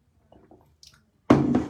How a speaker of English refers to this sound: I'll give you a little, as I sip my hot Ribena, so that they don't hear this bit.